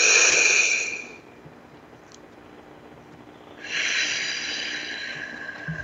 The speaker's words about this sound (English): Breathe in through your nose. Big breath. Actually, see how big you can make your belly. And then out through your mouth, like through a straw. Take another big breath. Make your belly bigger this time.